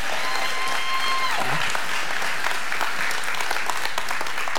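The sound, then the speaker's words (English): A crowd at TWBC bursts into steady, sustained applause for people who have been there 10 years, a dense patter of many hands clapping at once, with a brief tonal whistle-like sound early on that fades as the clapping continues. “Give them a better hand clap than that.”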